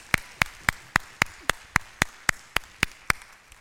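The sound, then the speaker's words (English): Audience applause as three volunteers come up, in a steady, even rhythm: about thirteen sharp, crisp claps roughly a quarter second apart, fairly quiet, with no voices over them. “Let's applaud them.”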